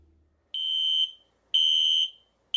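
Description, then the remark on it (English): A loud, shrill fire alarm in a burrito shop beeps in long, evenly spaced blasts, each about half a second, with short silences between them and no voices. “I asked her if she heard the fire alarm.”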